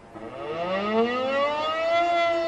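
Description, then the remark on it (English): Air raid warning sirens wail steadily across the city of Sarajevo, their tone sliding slowly upward in a long rising sweep, loud and sustained with an open, echoing quality. No voices. “Warning sirens wailed across the city, and its people scurried for cover, their radio station urging them to stay indoors.”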